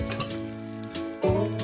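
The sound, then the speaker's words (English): Pizza dough sizzles steadily in a layer of hot olive oil in a pan, a crackling fry with a louder surge of hissing near the end as the dough is pressed to the pan's edges with a spatula. “And now I'll transfer my dough to the pan, very carefully. You can hear the sizzle.”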